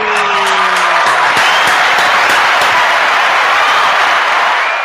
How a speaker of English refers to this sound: That round of applause was for my foofy hair. I got foofy hair tonight.